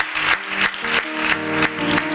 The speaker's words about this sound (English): Can we give our visitors a hand clap today? Thank you for joining us.